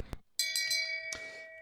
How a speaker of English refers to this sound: Well, let's ring the bell of shame and find out.